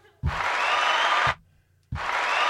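Two loud bursts of canned crowd applause, each starting and cutting off abruptly, with a short silent gap between them and a faint low hum underneath.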